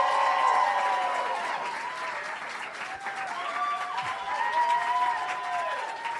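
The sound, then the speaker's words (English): A large audience at a show welcoming guests to the stage bursts into sustained applause, a dense, steady wash of clapping that holds loud for several seconds, with faint whoops and voices rising through the noise. “So all I need to do, you guys, to do is have a massive round of applause.”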